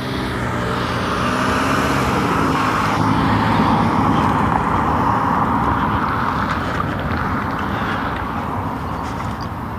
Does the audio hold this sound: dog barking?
no